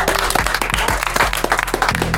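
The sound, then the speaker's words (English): Steady applause fills the moment, a group clapping together with individual sharp claps standing out against the dense patter, sustained throughout. “So, yeah, I got to clap it up for my brothers.”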